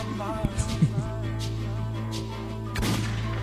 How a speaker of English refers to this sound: Just unnecessary gunshot.